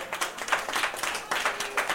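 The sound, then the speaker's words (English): A crowd applauds for the tax refund, many hands clapping in a dense, crackling patter that stays fairly loud and even throughout, with no voices standing out. “Clap it up for the tax refund, everybody.”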